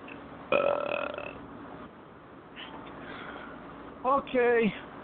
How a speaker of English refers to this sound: Okay, let's get to the belch of the week, and tonight, I'm giving it to Funimation.